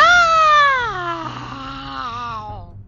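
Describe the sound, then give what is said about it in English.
A voice imitates a lion's roar into a well: one long, loud, drawn-out wail lasting nearly three seconds, its pitch sliding steadily downward before fading out, with a faint ring echoing off the well's walls. “He gave a huge roar. The roar echoed in the walls of the well and sounded even louder.”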